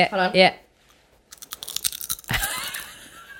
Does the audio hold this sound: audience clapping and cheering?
no